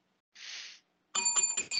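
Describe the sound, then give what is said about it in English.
A brief hiss, then a wrestling ring bell clangs several times in quick succession, loud, its bright metallic tones ringing out with no talking. “We can get a ring bell here.”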